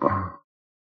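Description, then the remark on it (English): A single short, deep, loud burp with a low throaty rumble that cuts off after a fraction of a second, followed by silence. “Well, I'm stopped and said anybody, and you're burping and throwing away shit.”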